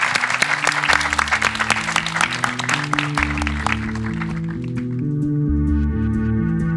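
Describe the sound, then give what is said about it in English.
An audience claps loudly in a dense, steady burst that thins out after about five seconds, while a low, sustained musical theme rises underneath and carries on alone. “So I think a big round of applause for them as well.”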